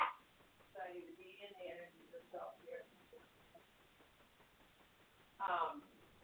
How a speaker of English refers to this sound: I'm sorry, I have my little dog barking in the background here.